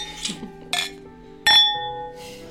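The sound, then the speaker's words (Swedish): Several glasses clink together in an Easter toast, bright ringing taps, the last one loudest with a sustained chime fading out. “Skål! Skål! Glad påsk!”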